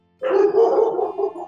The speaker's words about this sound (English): And the dogs are going crazy. So I guess it's time to end.